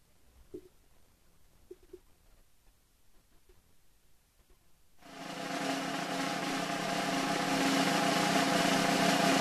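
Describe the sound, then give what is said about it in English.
A drum roll sound effect: after about five seconds of near silence with a few faint taps, a loud, dense, continuous rattling roll starts abruptly and holds steady to the end. “Drum roll sound effect.”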